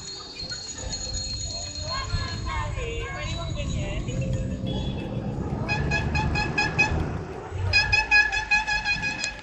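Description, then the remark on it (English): Cars and jeepneys honk their horns repeatedly in support of a protest on a busy street, with rhythmic bursts of tooting growing louder near the end amid a crowd's background chatter and traffic rumble. “At the protest, cars and jeepneys honked their horns in support.”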